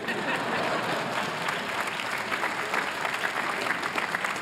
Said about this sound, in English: When I was growing up, U.S. Senator, yes, you can applaud.